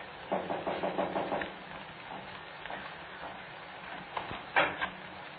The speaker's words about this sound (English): Now, take the knock on the door and the footsteps coming in.